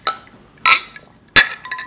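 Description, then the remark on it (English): Glasses clink together in a toast to a 13th anniversary, three bright, ringing chimes spaced about half a second apart, followed by a softer fourth tap, clear with no talking. “So cheers, everyone. Cheers. Cheers.”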